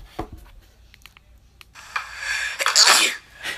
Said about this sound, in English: Oh man, I fucking sneeze in this.